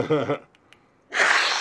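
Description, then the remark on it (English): A short voiced sound, then a brief pause, followed by a loud, hissing burst of a person blowing their nose because of seasonal allergies, lasting about half a second. “I'll blow my nose”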